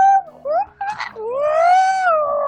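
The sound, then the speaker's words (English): A voice imitates a whale call: a few short swooping tones, then a long, rising, sustained moan with a wavering pitch, fairly loud and alone. “… tries to make like a whale noise back to him and just goes.”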